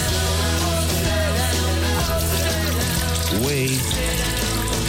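A toilet flushes loudly and steadily, a rushing gush of water with gurgling and a rising swirl near the end, heard up close with no voices.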